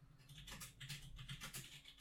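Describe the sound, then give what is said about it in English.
Rapid, irregular clicking of keys as a man types on a computer keyboard to look up who made the original Rage Comic, fairly quiet, with a low steady hum underneath and no talking. “Look at that accuracy in his typing.”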